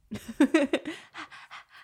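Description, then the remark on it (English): A voice imitates a wordless song made only of a beat and breathing, with quick, panting breaths and short voiced pulses, about eight evenly spaced bursts that soften toward the end. “There's no words to it. It's literally just a beat and breathing.”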